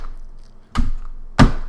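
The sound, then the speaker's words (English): A notary's rubber stamp comes down on paper twice, two dull, solid thuds a little over half a second apart, the second one slightly louder, with a short hush between them. “isn't notary just signing and stamping stuff? Here, let me do the, make the sound.”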